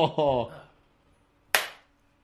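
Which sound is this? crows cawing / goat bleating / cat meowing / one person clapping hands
one person clapping hands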